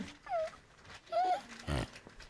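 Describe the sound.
A person imitates a whimpering pig with three short, whiny squeals, the first two rising and falling in pitch and the last one rougher and snort-like, with no speech.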